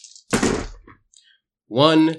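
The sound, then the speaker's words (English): Dice are rolled onto a hard surface to see if a player can use magic fingers, landing with a loud rattling thunk, followed by a few faint ticks as they settle; a short voiced sound follows after a pause. “And then I'm just going to roll to see if I can use magic fingers.”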